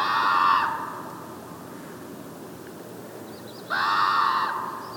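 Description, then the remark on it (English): Two harsh, drawn-out calls of a common raven ring out a few seconds apart over a salt marsh, each fairly loud and slightly echoing, over a steady open-air hiss of wind. “Sebastianelli stops to tape the calls of the raven, still echoing out over a salt marsh”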